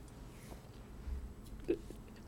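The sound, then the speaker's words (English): A person takes a very big gulp of a drink, with a soft throaty swallow sound standing out briefly against quiet background noise. No one speaks. “Unfair of you to do that while I was taking a very big drink”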